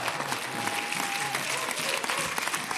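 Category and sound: crowd, audience hand clapping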